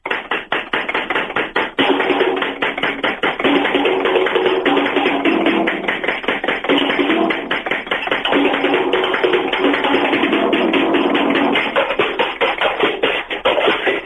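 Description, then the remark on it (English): A loud drum solo played on practice pads, with fast, dense tapping hits that sound thin and tinny, almost like tin pots, rattling on continuously for about fourteen seconds without any voices. “yeah, it's drums that magically sound like tin pots.”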